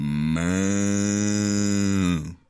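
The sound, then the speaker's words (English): A cow lets out one long, loud moo, a steady low bellow that holds for about two seconds before cutting off, with no other sounds around it. “The cow was so excited.”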